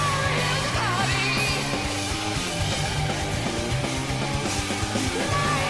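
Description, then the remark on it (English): A singer screams lyrics over loud, dense rock music, the harsh vocal pushing continuously through heavy drums and distorted guitars for several seconds at full volume. “God, the way he's screaming, he's pelting those lyrics out right there.”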